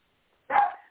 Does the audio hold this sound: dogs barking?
yes